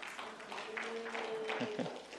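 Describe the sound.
An audience claps together in a steady, dense wash of many hands lasting about two seconds, with voices and a faint sustained tone mixed underneath.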